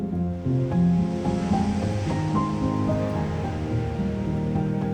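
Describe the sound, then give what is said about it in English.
Ocean waves break continuously on a beach, the surf rolling on steadily, blended with soft, sustained musical tones that hum beneath it at a moderate level. No one speaks. “Hear the ocean waves.”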